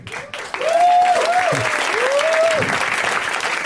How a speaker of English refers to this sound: Now is the point at which you clap excitedly.